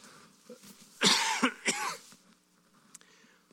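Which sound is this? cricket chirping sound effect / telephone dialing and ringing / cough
cough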